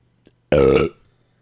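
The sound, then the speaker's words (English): A single loud burp, deep and rumbling, lasting under half a second and fading with a short tail into quiet. “As soon as he answers right now, I'll just burp.”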